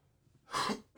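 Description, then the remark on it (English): A single harsh cough bursts out, loud and breathy, lasting about a third of a second, with quiet room tone before and after and no talking. “You see, like I coughed.”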